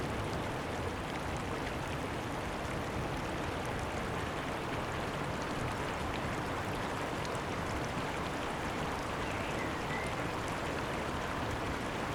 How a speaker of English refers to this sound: As I walk along the riverbank, the water takes turns in moving fast or slowing down to almost a trickle. Sometimes it bubbles, and other times it's just really calm.